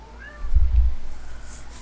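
A cat gives one short, fairly faint meow, with a low rumbling thump in the background and no talking.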